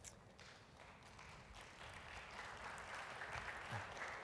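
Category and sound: crowd, smattering of applause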